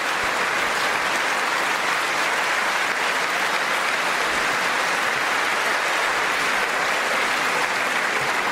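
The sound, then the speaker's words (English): Sustained applause from a large audience after the line 'Victory is winning for our country', a dense, steady roar of clapping that holds at an even loudness for several seconds without pause, with no voices rising above it. “Applause line, everybody.”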